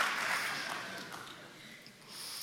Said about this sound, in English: Let's give Simon a cheer. There he is.